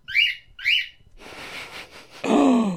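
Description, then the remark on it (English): A pet bird gives two quick, bright whistles with a rising-and-falling pitch, followed by a stretch of rustly noise and then a louder, lower whistle that slides downward. “My bird decided he wants some too.”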